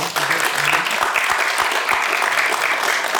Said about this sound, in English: Guys, please, a quick round of applause for panel once again.